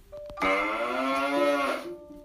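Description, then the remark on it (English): A single long, low cow moo holds steady for about a second and a half, rich, with a faint background hum before and after. “All around him were cows mooing. They mooed very low notes.”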